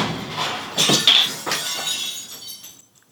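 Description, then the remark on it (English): Glass shatters upstairs in a loud crash, like a mirror breaking, with several quick bursts of bright, tinkling shards that fade away over a few seconds, on a very windy day. No one speaks. “Sounded like a mirror anyway.”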